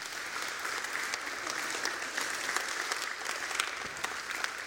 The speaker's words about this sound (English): Let's stand and give the Lord a clap offering today. Come on. Yeah, give the Lord a clap offering right now.